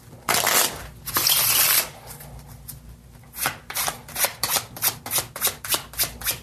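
Playing cards being shuffled during a magic trick: two long riffling bursts, then a quick run of evenly spaced crisp card snaps, each one a sharp papery flick, with no one speaking.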